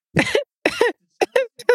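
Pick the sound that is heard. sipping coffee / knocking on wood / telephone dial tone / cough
cough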